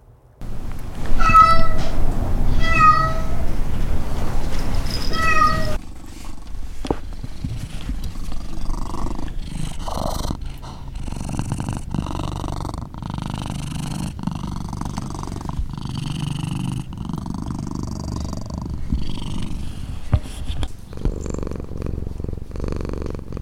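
Cats at the Pretty Paw Lounge meow in a few clear, rising calls, then a steady low purr rumbles continuously, punctuated by soft repeated meows and small shuffling sounds, with no talking.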